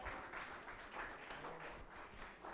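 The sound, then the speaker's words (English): Sustained audience applause welcoming Pastor Tony to speak, a dense steady wash of many hands clapping at a fairly even loudness throughout, with no voices standing out above it. “So why don't we give it up for Pastor Tony?”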